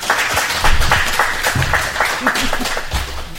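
An audience applauds a panel at the end of a question session, many hands clapping in a dense, continuous patter at a fairly loud level, with a few voices faintly audible underneath.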